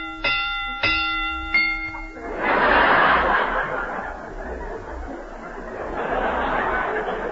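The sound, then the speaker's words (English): A bell rings three times in quick, even succession, each clear ringing strike cut short by the next, rung to give a mystery picture a rating of 3.5 bells, then an audience bursts into loud, sustained laughter that swells again near the end. “This mystery gets 3.5 bells.”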